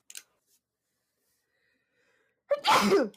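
A single loud sneeze bursts out after nearly two and a half seconds of quiet, preceded by a faint brief sniff or breath near the start.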